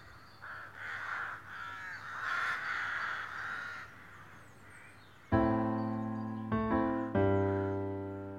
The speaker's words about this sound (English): So, and the crows just sound a bit fitting at this point.